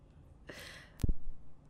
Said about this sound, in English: Hold on, let me... I'm going to blow my nose. See if I can clear out.